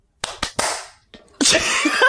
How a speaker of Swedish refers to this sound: Vi gör en gång till. Ska vi klappa? En gång till.